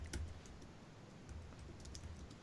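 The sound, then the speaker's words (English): Quiet, rapid computer keyboard typing with irregular clicking keystrokes, someone typing in football stats for a match preview, heard at a low level over a soft background hum, with no voices. “I hear the keyboards in the background typing in Brentford stats.”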